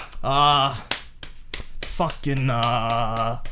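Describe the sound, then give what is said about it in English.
A few sharp, crisp slaps of a person slapping their own hand ring out between two drawn-out, sung-sounding vocal exclamations, the smacks quick and percussive against the sustained voice. “Just slapping my hand.”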